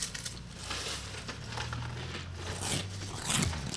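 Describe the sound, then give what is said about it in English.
Crunching of limited-edition pumpkin spice Frosted Flakes cereal as it is eaten: a steady run of dry, crackly chewing bursts with brighter crisp snaps near the end, over a low, faint hum. “It's crunchy.”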